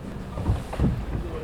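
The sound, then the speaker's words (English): Steady low wind rumble buffets the microphone over lapping water, with two heavier gusts or sloshes swelling briefly, aboard the Energy Tide 2, a moored tidal-power ocean energy boat, at the water's edge in Portland. “He shows me to the boat's business end, the high-tech composite blades”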